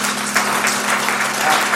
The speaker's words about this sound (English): A round of applause.